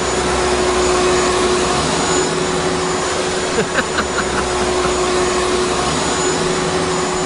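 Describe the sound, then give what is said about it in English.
A vacuum cleaner runs steadily and loudly throughout, its dense whooshing roar topped by a constant motor whine, with a brief clatter partway through and no talking. “Two women are hospitalized for trying to end their periods with a vacuum cleaner.”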